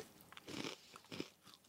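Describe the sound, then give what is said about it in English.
Crisp crunching as a thin, brittle chocolate snack bar from a green package is bitten and chewed, two main bursts of crackly crunch about half a second apart, with softer chewing noises in between and no talking. “Crunchy, but like not at all brittle or dry.”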